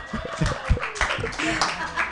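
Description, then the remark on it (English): Scattered audience hand claps, uneven and fairly loud, pop out in short bursts while voices murmur and chuckle underneath for about two seconds. “clap it up for tails, everybody.”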